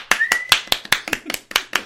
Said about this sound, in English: Who's that hobo in the corner clapping? I'm glad he agrees. Look at that staccato burst.